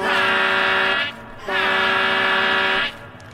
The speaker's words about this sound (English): It honks loudly, even twice as loud as before, activating your fight or flights.